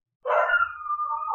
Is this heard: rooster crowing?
no